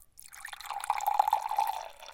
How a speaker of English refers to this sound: Let's do some ASMR. Maybe it sounds different when you pour it. And the cork isn't here, unfortunately. No, I'm just for pouring it. Oh, okay. Maybe it has more weight, so it does like... with bass.